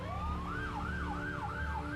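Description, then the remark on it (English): An old-style police siren wails up and down in smooth repeating sweeps, loud and steady, over a low rumbling engine hum with no one talking. “Old school police cars, too.”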